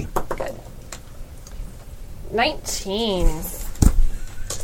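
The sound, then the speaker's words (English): A set of brand new dice is rolled during a tabletop game, clattering onto a surface in a short burst of light clicks and rattles, with another sharp knock later, while someone makes a wavering voiced sound in between. “I'm going to roll my dice.”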